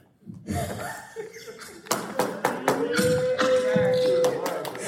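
A chair is pulled across a hard floor, a scraping grind with a sustained squeal in the middle, broken up by bumps and knocks, fairly loud.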